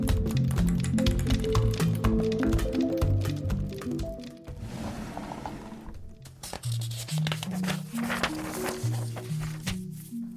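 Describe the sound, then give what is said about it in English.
A pencil scratches and taps out letters on a desk in quick, uneven strokes, layered over low sustained pitched tones, with a brief smoother hiss midway before the busy writing resumes. “Someone is writing letter on the desk with pencil.”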